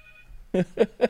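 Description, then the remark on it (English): A phone rings in three quick, evenly spaced pulses after a brief faint tone, moderately loud, with no one talking over it. “And apparently the Pentagon's calling right now.”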